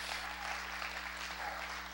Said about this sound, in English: Come on, give the Lord a hand clap in the house this morning.